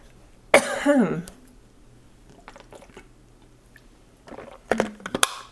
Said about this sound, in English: Hang on, I need to get a drink of water.